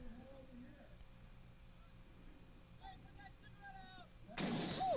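A car explosion from a played video, in which a person throws a cigarette and the car explodes, erupts suddenly near the end as a loud, harsh burst, following several seconds of quieter honking, warbling tones and faint murmur.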